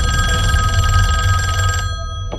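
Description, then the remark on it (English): An old-fashioned telephone bell rings at the Cooper Jones house during breakfast, a rapid, metallic clatter for almost two seconds that then stops abruptly, over a steady low hum. “So they're eating breakfast at the Cooper Jones house, and the phone rings.”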